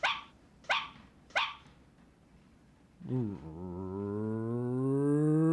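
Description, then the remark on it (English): A dog gives three sharp, evenly spaced barks as a 3-2-1 countdown, then after a short pause lets out a long, steadily rising whine that swells louder toward the end. “The dog's going to... Yes, I'm talking to his trainers. He's going to give us a 3-2-1 countdown”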